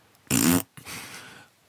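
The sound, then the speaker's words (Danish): A voice imitates a fart: a short, loud, buzzy raspberry burst, then a softer, breathy sputter trailing off. No speech alongside, just the mouth noise. “Og vi kan blive enige om, at pruttelyd er sjove og sådan noget, ikke?”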